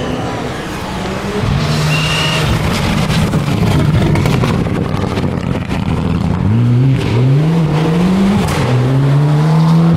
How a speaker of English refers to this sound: I'm looking down the track now. Welsh forest lit by sunlight on the other side. Here comes, what's this, a Mitsubishi?